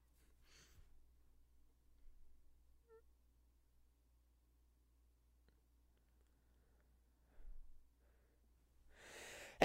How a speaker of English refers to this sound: Bless you. Thank you. See, that was one sneeze. I can't help how many sneezes I have. You had so many. I was so concerned about you. It's like six. All right. I only sneeze like once a day or less.